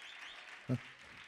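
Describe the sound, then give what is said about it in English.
Faint, steady applause from a church audience in Denton, Texas, clapping to thank God at the blessing of their church facility, dense, with a brief voice breaking through for a moment partway in. “If you've been a part of the journey and the miracle of getting in this to this facility, if this is your home church, feel free to clap right now and thank God for the miracle of this blessing.”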